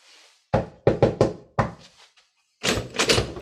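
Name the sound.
door opening sound effect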